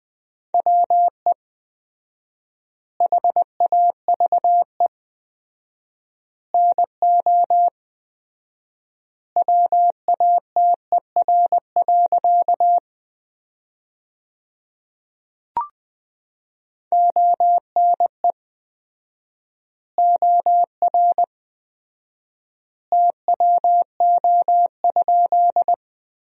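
Morse code sent at 20 words per minute with 4x word spacing, sending sentences built from the top 100 words: a single steady mid-pitched tone keyed into quick dots and dashes, grouped into bursts with long silent gaps between them and one brief click midway.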